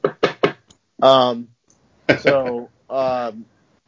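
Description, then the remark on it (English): Three quick knocks on wood in a fast run, followed by a few short voiced sounds from a person. “But other than that, I've never had an ESC blow up on me in the air or on the bench, or a BEC or any other kind of failure, knock on wood.”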